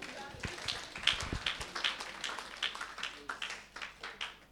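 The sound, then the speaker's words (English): A crowd claps steadily for a bishop for several seconds, the dense, irregular slaps rising and falling in loudness, with scattered voices mixed into the applause. “Can you clap for your bishop?”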